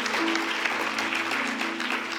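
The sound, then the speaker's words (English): An audience at an 11 o'clock church worship service bursts into steady, dense applause, many hands clapping together in a sustained wash of sound that holds evenly throughout, with a faint hum underneath. “Come on, clap if you think God's good.”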